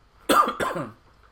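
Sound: human cough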